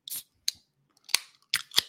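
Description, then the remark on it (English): A can of Huss Brewing Scottsdale Blonde beer being cracked open: a brief fizzing hiss followed by several sharp, crisp metallic clicks spaced unevenly over about two seconds, with no one talking. “So I have a Huss Brewing Scottsdale Blonde drinking the local as per usual. So let's go ahead and crack them if you got them.”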